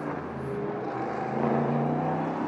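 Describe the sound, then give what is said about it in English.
A loud racing car engine roars steadily on a race track as the car bumps through a divot in the middle of the La Source corner, its pitch climbing slightly as it accelerates and grows a little louder. No voices. “There's a real divot right in the middle of La Source there, and the car bumps its way through.”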